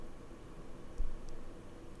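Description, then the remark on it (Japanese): A steady, low whooshing fan hum picked up by a condenser microphone fills the background, even and unbroken, with one brief soft bump partway through and no voices. “ASMR なんかではね、こういう音を取る必要があるので、逆にこのねファンのノイズが乗ってしまうことが問題になってきますね。”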